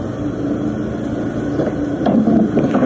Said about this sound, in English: Ooh, we're gonna knock it over. Knock over that big pile of wood there. Knock it over, buddy.